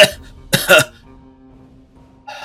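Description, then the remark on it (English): A voice imitates a character coughing up sap, with a short rough burst at the start, then a louder double cough, followed by a thick gurgling hum and a brief rasp at the end. “And Dewey, he's like coughing up like sap.”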